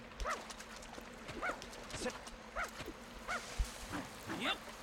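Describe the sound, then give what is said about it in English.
In a video game, a dog gives about five short, high yipping barks spaced roughly a second apart, with soft thumping footsteps and shuffling between them, moderately loud, as it finds tomato seeds. “Oh, the dog has found something.”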